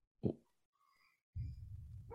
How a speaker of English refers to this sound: Look, my dog's barking.